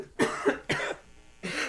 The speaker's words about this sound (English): Cough City.